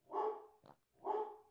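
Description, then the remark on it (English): Two loud dog barks about a second apart, each a full-bodied woof with a short, breathy sound between them and no talking. “Cue the dogs barking.”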